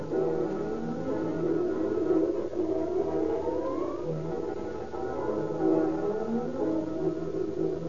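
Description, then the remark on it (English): Several sirens of fire engines, chemical cars and battle wagons wail at once, their pitches rising and falling in overlapping sweeps, loud and continuous, as they race through deserted streets to a fire at the Edison Company's garage at 1570 East 1st Street. No one speaks. “Fire engines, chemical cars, and long, sleek battle wagons fly screaming through the deserted streets.”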